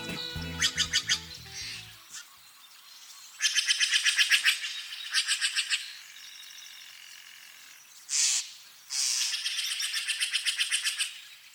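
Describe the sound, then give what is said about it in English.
Songbirds sing along the banks of the Russian River, just north of Marin County, recorded by Ed Herman, in bursts of rapid, high trilling notes, with a brief harsher call in between; an opening low thrum fades after two seconds, leaving only the bright, fairly loud birdsong. “Many songbirds called the Russian River home. Ed Herman recorded as many as he could, and here's a sampling.”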